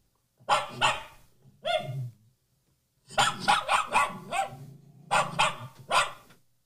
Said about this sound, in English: I think we have maybe one more example of the request barking.